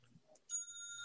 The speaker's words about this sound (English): I need my bell. I know. I got it somewhere.